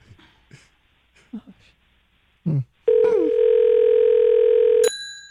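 A steady, loud telephone dial tone during an outgoing call holds for about two seconds after a few short bursts of muffled talk, then cuts off abruptly with a brief high-pitched click.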